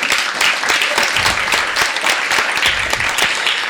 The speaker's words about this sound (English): Okay, so one last time, are we ready to clap our asses off for the first reader? Yeah.